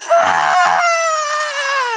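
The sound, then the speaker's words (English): A girl screams in one long, loud, piercing wail that starts with a couple of strained bursts, then holds a high, steady pitch that slowly falls at the end. “And suddenly the the girl in the room looks at you and starts screaming.”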